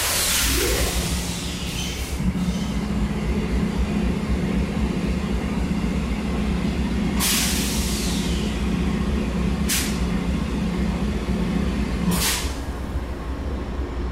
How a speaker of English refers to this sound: It's quite busy here on the platform tonight. Lots of baggage carts hurtling down the platform.